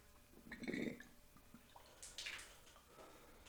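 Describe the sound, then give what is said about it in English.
Water trickles and gurgles into a glass honey jar recycler in a few short, wet bursts, fairly quiet, with soft splashing and dripping between them and no talking. “Let's see if this water level is right.”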